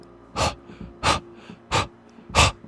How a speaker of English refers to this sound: A wet, rapid breathing. Waiting for me at the door to City Hall.